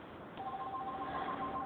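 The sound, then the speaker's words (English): A telephone signals an incoming call with a steady, warbling electronic tone that pulses on and off, heard over a thin, hissy phone line with no one speaking. “And somebody right now is calling me at this moment.”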